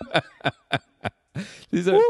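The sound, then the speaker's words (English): Four sharp, evenly spaced coughs in quick succession, then harsher, raspier hacking that ends in a strained, voiced gasp, fairly loud with no talking, from a person who drank a little water that went down the wrong way. “… is drank a little water and is now coughing like a crazy person. Down the wrong hole.”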